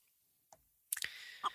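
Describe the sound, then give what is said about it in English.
A few short, quiet hen clucks in an irregular rhythm: one soft cluck, a quick cluster of two or three, then one more, with no voices. “His nickname for Katherine Knight was the Speckled Hen.”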